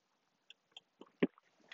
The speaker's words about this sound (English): coconut water break. Thank you.